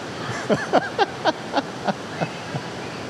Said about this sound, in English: It gets loud in here. So I'm not yelling at you just to get over the sound of the rain.